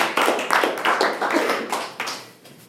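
An audience breaks into applause, a dense, steady patter of many hands clapping at once, fairly loud and sustained, with no voices over it.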